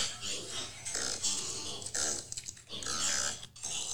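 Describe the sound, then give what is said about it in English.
A tiny pig caught in some pillows grunts and snuffles in a series of short, raspy bursts, played back thin and tinny from a TikTok video on a phone, with no talking over it. “It's a tiny pig caught in some pillows.”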